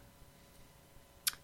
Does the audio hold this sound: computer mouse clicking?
yes